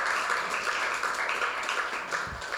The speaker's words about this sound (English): Serve Day. Come on, someone, clap your hands for Service Day. Serve St. Albert.